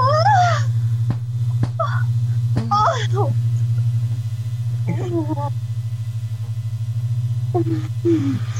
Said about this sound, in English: Hey, cat, stop.